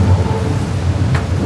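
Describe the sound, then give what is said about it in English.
A train rumbles overhead, a loud, steady low roar throughout with a brief hissing whoosh near the end; no voices are heard. “Yeah, because completely visual, and the train going over.”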